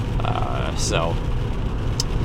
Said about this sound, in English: I got to get around this car here. One car in front of me is going like 50 miles an hour on a 70 mile an hour freeway. Is a little slow.